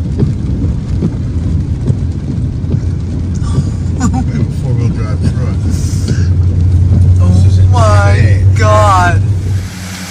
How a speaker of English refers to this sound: Oh my God, look at that car right there. Wow. Look at us. Look. He should not be driving in water that deep. Oh. That car is not made for that.